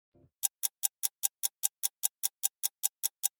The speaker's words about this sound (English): the clocks that are like in an elementary school or something, they're great big clocks with the hands on them and they're noisy.